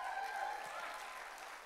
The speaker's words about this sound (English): She is actually speaking at her church in Austin, or I know that her and my dad would be on the front row cheering me on, and so I need y'all to cheer me on this morning, please.